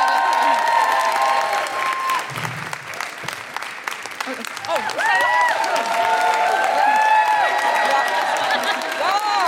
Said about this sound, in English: Okay. Yeah, keep clapping. Yeah.